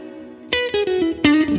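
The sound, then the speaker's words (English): Bright electric guitar notes picked in a short descending run through a TC Flashback Mini pedal on its main slapback tone print, each attack followed by a quick, subtle slapback echo that thickens the sound; two louder phrases with a brief gap, no voices. “From there, it goes to the TC Flashback Mini. Sure. Which is my main slapback.”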